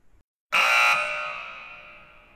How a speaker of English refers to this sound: That buzzer indicates the end of this episode of Settler's Corner.